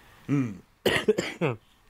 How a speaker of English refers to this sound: Sorry. This is a really bad cough.